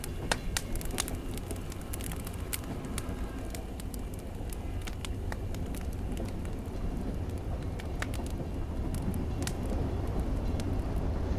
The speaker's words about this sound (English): Let me put this campfire out. Or should we let it burn? Yeah, let's let the campfire go. Let's just slowly walk away from the campfire.